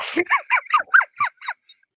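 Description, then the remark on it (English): Two ducks, summoned by a sword tapped on the ground, give a rapid series of about seven nasal quacks in a steady rhythm, loud at first, then growing fainter and trailing off at the end. “taps the blade on the ground just in front of your feet, Sophia, and two ducks appear”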